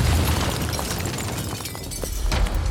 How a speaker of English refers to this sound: They saw several sticks of dynamite tied together with a piece of cloth. This was no hoax. Lynch sighed, then told Socha, quote, "It's the business." Those were his last words. The bomb detonated.